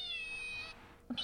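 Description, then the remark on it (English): A squeezed plush toy cat lets out a high, thin electronic meow lasting under a second, close and fairly quiet, followed by the start of another brief chirp. “He hid it in his pocket, and we were snuggling, and he's like, you squeeze it, it meows.”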